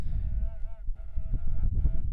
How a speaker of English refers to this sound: This is an indigenous large bull horn or cow horn that you blow into holding with one hand, and with the other hand he holds a leather drum and taps it with a padded drumstick. He plays as the bikes come past